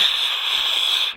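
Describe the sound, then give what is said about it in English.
Very heavy rain hisses outside an apartment in a steady, unbroken wash of high whooshing noise that holds at an even loudness for the whole moment, with no voices over it. “So if you hear a whooshing sound in the background, that would be the ridiculous amount of rain that we're currently receiving.”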